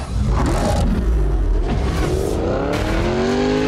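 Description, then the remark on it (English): The engine of a Koenigsegg Regera supercar in the video game Need for Speed roars loudly and continuously, its pitch climbing through rising harmonic sweeps as it accelerates hard, with a deep rumble underneath and no voices. “Koenigsegg Regera. 0 to 60 in 2.7 seconds.”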